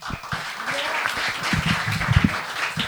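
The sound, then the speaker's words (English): An audience claps in a dense, steady patter of many hands after being asked to make some noise for revolution, fairly subdued rather than roaring, with a few scattered voices mixed into the applause. “That was some light noise for revolution.”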